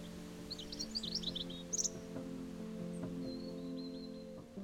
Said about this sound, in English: I've been known for saying that I believe that birdsong should be prescribed on the NHS because it can absolutely change your life.